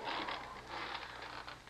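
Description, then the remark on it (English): A chair creaks and groans under shifting weight as a man is lowered into it, a faint, continuous run of scraping creaks with no voices. “Lower him into that chair.”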